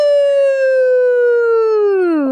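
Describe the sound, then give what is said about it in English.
A voice imitates a wolf howl: one long, loud, steady, mid-pitched "hoooo" held for a couple of seconds, then sliding down in pitch at the end. “And then she's you hear the wolf.”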